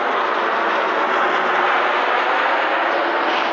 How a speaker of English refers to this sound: Lots of noise here. Got jets flying over. Got cars.